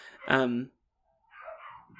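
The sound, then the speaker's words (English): Dogs barking in a hotel: one loud, drawn-out bark, then a pause and fainter, more muffled barking near the end. “Oh, the dogs are going crazy.”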